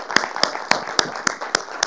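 A short burst of applause heard as steady, evenly spaced claps, about seven in under two seconds, crisp over a soft background murmur.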